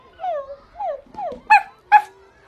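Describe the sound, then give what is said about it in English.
A curly-haired, button-nosed puppy whimpers: three short, high whines that slide downward in pitch, followed by two sharp, louder yips, with no talking. “So, what a wonderful surprise it was when his mother collected him at lunchtime and handed him the cutest curly-haired button-nosed puppy.”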